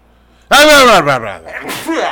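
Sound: sneeze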